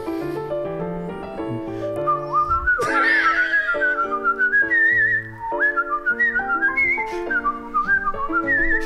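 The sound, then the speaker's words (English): A person whistles a sliding, melodic tune, loud, over steady instrumental backing music, the whistled line entering a few seconds in and carrying the melody to the end. “first shot at professional whistling”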